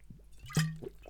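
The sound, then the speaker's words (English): A quick sip of London tap water from a glass: a soft wet slurp with a small clink, followed by a faint swallow. “Another sip of delicious water.”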